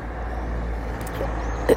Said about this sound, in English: There's cars. I'm sitting at this like perfect place for tons of cars to pass by.